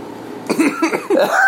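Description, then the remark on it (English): A quick burst of short, sharp nervous coughs, breaking off into a strained, squeaky rising wheeze at the end, with no talking. “No, dude, that's my nervous cough.”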